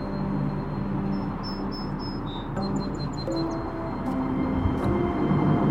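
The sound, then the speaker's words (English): A car of the Monongahela Incline railway, run by the Port Authority of Allegheny County, rumbles steadily along its tracks for several seconds, a continuous low grinding roar with brief high-pitched squeals or chirps above it and no voices. “And I wonder if that's what it was like to commute on this railroad 150 years ago.”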